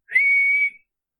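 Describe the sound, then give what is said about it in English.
A single shrill, steady whistle blown through an acorn cap, piercing, holding one high pitch for about half a second before cutting off. No talking. “I will pick up an acorn and I'll rip the top off and I'll say, I have a whistle here.”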